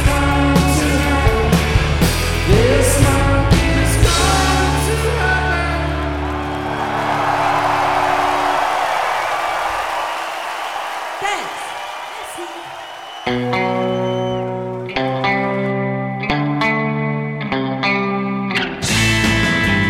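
A loud live rock band plays distorted guitars and pounding drums with sung vocals, a wash of feedback and crowd noise swelling mid-song before hard, chopped chords punch back in.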